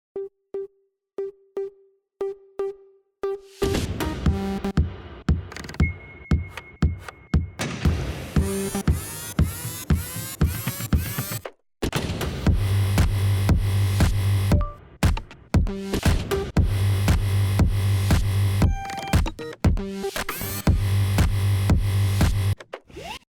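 An electronic music track made by Volvo from vehicle sounds (clicking seatbelts, blinking headlights, slamming doors and swiveling mirrors): a steady ticking pulse opens alone, then loud layered beats with clicks, thumps and a deep bass line kick in, with no voices.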